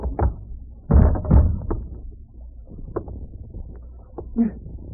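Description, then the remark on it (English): A sharp blow lands, knocking a man unconscious, followed a moment later by a heavy double thump like a punch knocking someone down, then quieter scuffling and small knocks trail off. “I didn't want to knock you out, much less tie you up.”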